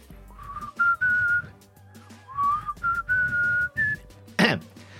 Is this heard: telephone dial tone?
no